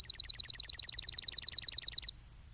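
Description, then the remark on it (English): A chipping sparrow sings its dry, rapid trill: about twenty high, identical chip notes in an even run lasting two seconds, then stopping abruptly, with only a faint low rumble behind. “It eats weed seeds and mostly harmful insects and fills the summer air with a trilling call that gives it its name.”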